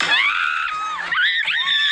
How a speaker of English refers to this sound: This is me afterwards screaming about it.